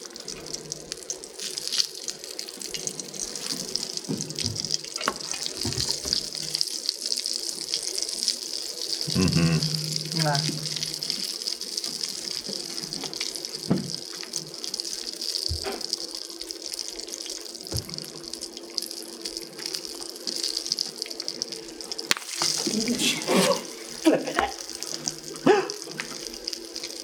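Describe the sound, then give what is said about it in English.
Popcorn kernels sizzle in a steady, hissing crackle, with scattered sharp pops and ticks breaking through at irregular moments over roughly half a minute. “The sizzle is extremely satisfying. It's a lovely ASMR sizzle.”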